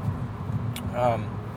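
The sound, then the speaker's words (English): Steady low engine rumble from inside a moving car in heavy morning traffic, with a brief hiss and a short tonal whine from road traffic over the continuous drone. “But anyways, there's tons of traffic this morning, but I just don't care.”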